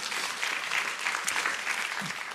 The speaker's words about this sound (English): Yeah, go ahead and applaud. I think it's pretty cool.